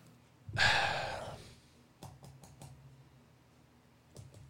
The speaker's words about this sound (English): Bailey over here, Prego, so I don't know if she's ready to pop or what. But she's over here fucking panting.